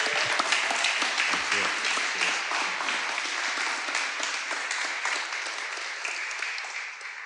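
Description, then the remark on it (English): Sustained crowd applause as special guest Ace from the original Gladiators comes up, a dense wash of many hands clapping at a steady, fairly loud level for several seconds, tapering slightly at the end. “So can we give Warren a massive round of applause as he comes up today?”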